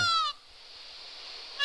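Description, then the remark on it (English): A loud, piercing peacock call with a nasal, meow-like wail cuts off abruptly, leaving a steady hiss before another cry begins right at the end. No one speaks. “Just for that, right, what I've done is I also recorded the real bird noise. Okay. So I'm going to play that to you.”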